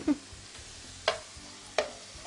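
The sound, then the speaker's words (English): Hamburger patties sizzle steadily on a hot surface while a spatula clacks and scrapes against it three times, sharp, as the patties are flipped. No one speaks. “And you can flip, the more you flip the burgers, the better, because we don't want to char grill them.”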